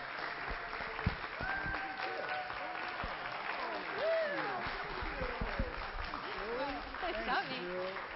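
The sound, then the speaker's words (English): An audience applauds itself, honoring members who served and are transitioning off. It is a dense, steady patter of clapping that lasts the whole time, while several voices talk and call out over it. “But give yourself a round of applause.”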